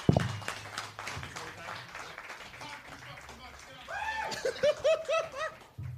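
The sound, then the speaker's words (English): A crowd claps steadily in a dense, continuous patter, with whoops and cheers rising over the applause toward the end before it cuts off. “Hey, guys, give it up for John Wolf. Y'all thank you, applause.”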